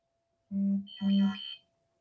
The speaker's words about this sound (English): Somebody help me out here. Why is my phone going off?